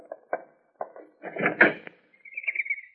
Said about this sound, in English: Close the door.